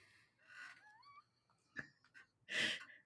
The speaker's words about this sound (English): Did I hear a dog? Coopy has a mind. Oh, Coop, he's buddy. He's fully asleep, so he woke himself up.